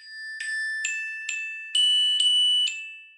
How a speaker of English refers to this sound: Okay, there's lullaby.